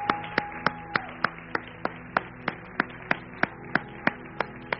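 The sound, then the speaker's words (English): An audience at a Resurrection weekend 2014 morning service claps for Jesus together in a steady, even rhythm, about three sharp claps per second over a soft sustained musical hum, with no talking. “Can we just give, we've done a lot of clapping, but let's just give Jesus a great big clap this morning.”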